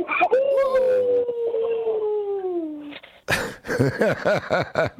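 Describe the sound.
A person gives a loud imitation of a wolf howl, one long sustained note slowly sliding downward for a few seconds, then a burst of lively voices and laughter follows.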